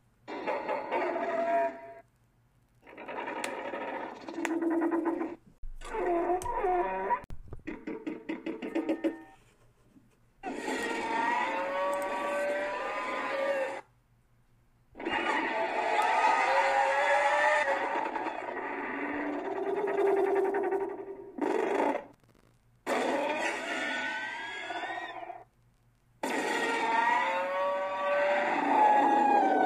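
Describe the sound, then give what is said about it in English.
Rodan, the legendary giant flying monster, screeches and growls in a string of loud, drawn-out bursts with brief silences between them. The calls waver and slide in pitch over a rough, bellowing tone, with low guttural clicks and growls. The voice uses recordings of cranes, owls, penguins and vultures. No one speaks. “He also makes low guttural clicks and growls that sound oddly similar to the Muto's, but deeper in tone.”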